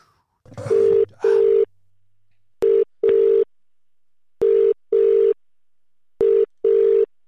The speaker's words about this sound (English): But I'm going to dial that phone number now, just getting it from his Instagram story. And then we will kick it off, guys.